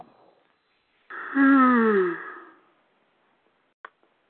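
A loud, drawn-out human yawn rises and then sags in pitch over about a second and a half, strained and almost howl-like, followed by a faint click and quiet.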